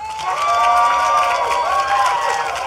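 An audience bursts into sustained applause mixed with cheering and excited voices, applauding to vote on a debate about scissors; a dense, loud wall of crowd noise that holds steady for a few seconds.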